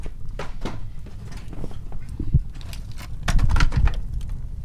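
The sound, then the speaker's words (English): A fire burns as an object is thrown into it, with irregular sharp crackles and pops over a steady low rumble that grows louder and busier toward the end. “Yep, that's burning all right.”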